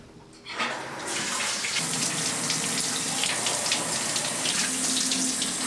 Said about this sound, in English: I've been watching you take a shower for the past 40 minutes. Think of all that water you're wasting.